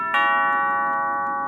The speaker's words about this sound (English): Like a chime, or we would know it as a doorbell.